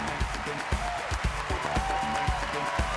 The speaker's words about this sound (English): The audience stands, gets on their feet, and applauds.